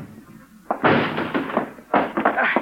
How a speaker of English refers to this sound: All right, Juan. Break down the door.